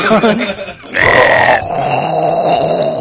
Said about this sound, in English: Is that you making that weird noise before the burp? Do you hear it? It sounds like yeah. It sounds like gas.